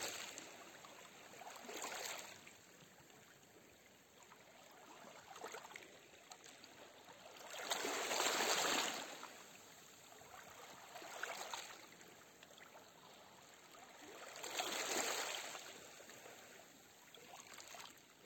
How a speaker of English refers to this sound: Do any subconscious programs that no longer serve you just fade away and be taken away by the ocean waves.